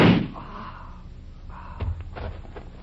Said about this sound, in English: Your bullet pierced the gas tank. Instead of shooting your way to freedom, you've destroyed your only avenue of escape.